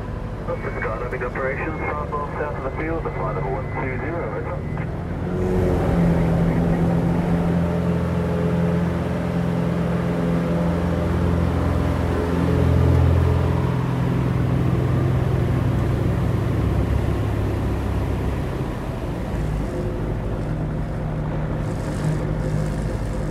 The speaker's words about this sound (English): Well, I did go to the bush, taking a light aircraft to Kings Creek in Kings Canyon after my earlier visit to Uluru in Australia's Northern Territory.